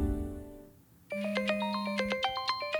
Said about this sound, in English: … picks up the phone.